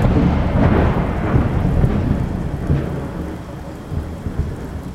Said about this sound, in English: It began to rain in December 1849 and continued without cease for weeks on end.